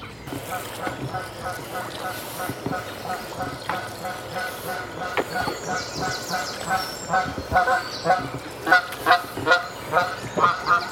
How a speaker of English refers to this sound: Do you think we're upsetting that goose? No, they weren't. They were just flying up river, making a racket and calling for his mate now, I think.